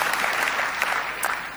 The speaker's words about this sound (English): Give yourself a clap, man, nice.